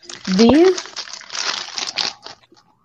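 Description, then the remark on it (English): Crinkly plastic snack wrappers rustle and crackle in a busy, irregular flurry as a woman rummages through them in her snack drawer next to her bed in Canada, with a brief wordless voice sound near the start before the crinkling trails off. “digs in her snack drawer.”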